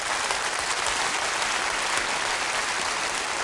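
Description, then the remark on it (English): An audience applauds steadily, a dense, even wash of many hands clapping at a constant loudness throughout, with no voices standing out. “Can we take a moment and clap for those who no one even knows is doing that right now and give them honor?”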